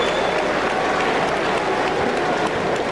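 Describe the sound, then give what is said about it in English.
Steady, moderate, polite applause from a large arena crowd at La Colisée in Québec after Winnipeg selects Adam Denmark, a dense wash of many hands clapping at an even level throughout, with no voices standing out. “Now some polite applause.”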